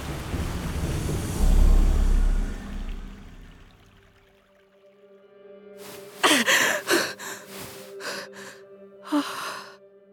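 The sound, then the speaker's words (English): A low rushing, rumbling wash fades out, then after a brief hush a woman waking from a dream gasps for air in several sharp, breathy pulls, fairly loud, with no talking. “Rhea woke up, gasping for air.”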